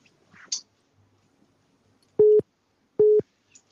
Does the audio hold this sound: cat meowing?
no